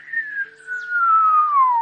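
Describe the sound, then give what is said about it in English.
A single whistled tone slides slowly and steadily downward in pitch, imitating a slide whistle, as Gorgu raises and lowers his neck farther out of his body. It is clear and unbroken, with no talking, and grows a little louder toward the end. “Gorgu just raises and lowers his neck farther out of his body, making a slide whistle sound.”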